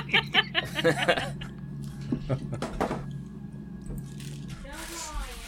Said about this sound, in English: Oliver is pouring a thing of cereal into a container because we got some new cereal today.